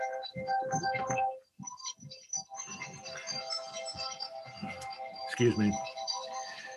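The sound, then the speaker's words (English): A mobile phone, left in the room, rings with a steady, melodic electronic tone that keeps going throughout, while a man talks over it. “I hope you don't disagree with this, but in a very real sense, that was my wife's phone. And she forgot to take it out of the room.”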